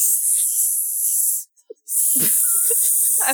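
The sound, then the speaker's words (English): A person imitates a snake with a loud, drawn-out hiss, pausing briefly in the middle before starting a second long hiss with faint throaty sounds mixed in. “I'll play the snakes.”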